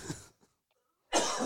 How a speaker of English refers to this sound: …'s going to have a cough attack.